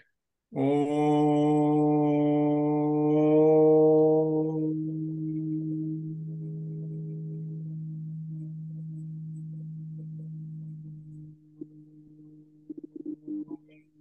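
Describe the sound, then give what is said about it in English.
After chanting the Om Mani Padme Hum mantra, a single voice holds a deep, sustained humming chant, strong and resonant at first with rich overtones, then gradually softening into a long steady drone before a few faint murmurs at the end. “And then when I finished the Om Mani Padme Hum in 10 minutes or 15, I'll go like this.”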